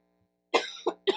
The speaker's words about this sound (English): It's viral, so. And I'm starting to cough a lot and gonna lose my voice.